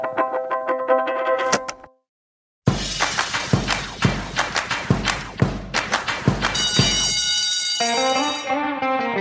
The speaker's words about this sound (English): That bell can only mean one thing. It's time for Planet Money Summer School.